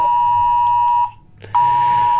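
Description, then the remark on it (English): A loud, harsh emergency alert tone for a flood warning blares steadily from two phones going off at the same time, breaks off for about half a second, then starts again just as loud. No one speaks over it. “Oh, look, an emergency alert. Both our phones are going nuts.”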